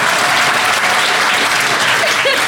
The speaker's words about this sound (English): Oh, yeah, there's some more of that. Applause there.